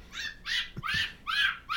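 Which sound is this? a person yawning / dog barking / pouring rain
dog barking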